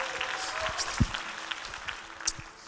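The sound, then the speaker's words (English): An audience at an evening church service claps for Jesus as they sit down, a steady, dense wash of applause with a few sharper individual claps standing out, fading slightly toward the end. “Give Jesus a hand clap as you're seated tonight.”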